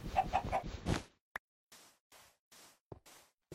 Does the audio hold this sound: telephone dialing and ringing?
no